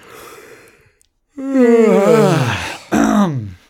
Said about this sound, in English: It's funny that we're tired and yawning when we're recording during the day.